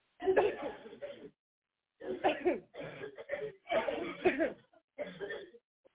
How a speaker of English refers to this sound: Now everybody take a deep breath and cough.